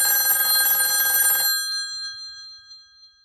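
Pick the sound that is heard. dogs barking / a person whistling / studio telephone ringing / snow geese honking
studio telephone ringing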